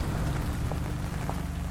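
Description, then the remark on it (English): Steady rain falls continuously on houses and parked cars along a street at night, a dense even patter spread across the whole stretch with faint brief drips standing out, heard alone without any voices. “The sound of the rain on the houses was loud.”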